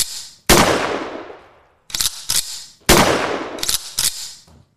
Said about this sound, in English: This is where the gunshots would come in.